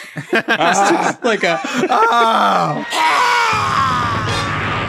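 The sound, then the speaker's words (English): Someone breaks into chuckling, then lets out a loud, sustained imitation of a giant creature's human-like scream, strained and raspy, held for a couple of seconds. “Because mostly, it cuts to her, and she just does like a human scream.”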